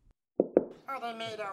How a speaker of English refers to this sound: I think I'm okay. Knock on wood.